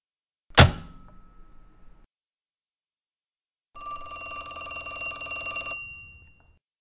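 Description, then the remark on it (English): A sharp clank with a short ringing decay, then after a pause a loud, sustained telephone bell rings for about two seconds, clear with no voices. “Oh, who's trying to call me?”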